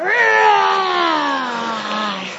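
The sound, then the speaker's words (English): A person imitates a lion's roar, as for a camp play of The Lion King, with one long, loud, drawn-out vocal growl that starts high, then slowly slides down in pitch over a couple of seconds before trailing off. “Is that a lion or a dinosaur? It's need to be a lion.”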